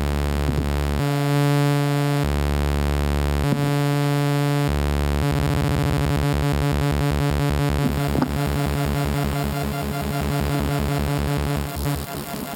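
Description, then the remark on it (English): Harsh, buzzy synthesizer oscillator tones cut in and out in blocks, then dissolve into a fast, rhythmic pulsing warble as an LFO, moved from the carrier back into the oscillators, sweeps the pitch with steady modulation; loud, with no talking. “I'm going to now put it back into the oscillators just for fun because it's such a crazy sound.”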